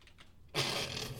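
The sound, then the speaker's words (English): Typing on a computer keyboard starts abruptly after a brief quiet moment, becoming a dense, rapid clatter of keys that continues steadily, with no voices. “I hear typing.”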